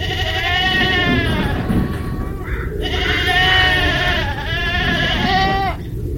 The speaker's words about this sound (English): Oh, and by the way, I have a little bit of some sound bites of the goats, which we can play right now.